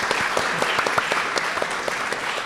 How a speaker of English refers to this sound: So another round of applause for Gill, I think, as well.